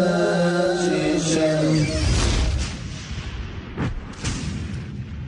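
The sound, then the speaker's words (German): A rising tonal whoosh gives way to a loud cinematic explosion from a film, with deep rumbling bass, then crackling debris and a couple of smaller bursts as it fades. “Man hört sie immer nur, also diese Liebe für Explosionen und so Lichteffekte.”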